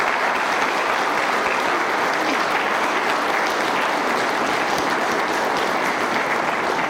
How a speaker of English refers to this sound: And I think we should give them a round of applause for everything they've done so far.